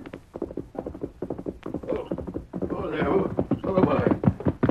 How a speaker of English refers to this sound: That Andy? That's the horse he rides, isn't it?